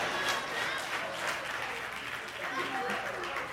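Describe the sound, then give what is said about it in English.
An audience claps steadily for several seconds, a dense, continuous patter of many hands at moderate volume, with faint crowd voices mixed in underneath. “If you don't clap, I'm going to know I'm talking about you.”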